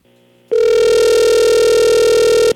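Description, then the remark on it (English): A telephone call being placed: after a faint low hum, a loud, steady ring tone sounds once for about two seconds, a single buzzy mid-pitched note with no voices. “So let's give him a call and see what he has to say.”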